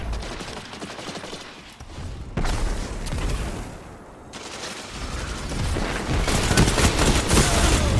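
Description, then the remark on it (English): Loud, dense video game gunfire from a hand cannon, with rapid overlapping shots and booming reports, continuing throughout with brief dips before surging again near the end. No one speaks. “Dang it, hand cannon.”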